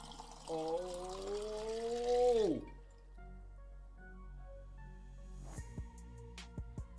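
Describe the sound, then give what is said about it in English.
Liquid pours steadily into a container for a couple of seconds, its tone rising as the vessel fills, then stops; a few soft drips and small clinks follow. “We're going to see how crazy I can get here with the pouring.”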